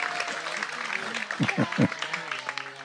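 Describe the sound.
An audience applauds the speaker's translator in a steady, dense patter of many hands clapping throughout, with a few heavier, lower claps standing out midway and murmuring voices mixed underneath.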